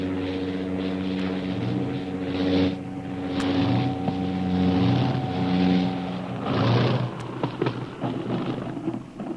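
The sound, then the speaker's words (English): A seaplane's propeller engine drones steadily, its tone rising and falling, while bursts of rushing, splashing noise surge in and out as it comes down on a lake. “Last week, the seaplane was about to land when a small boat was discovered adrift on the lake, making the already precarious landing more dangerous.”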